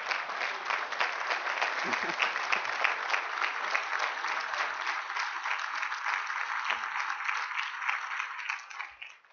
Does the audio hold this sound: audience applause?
yes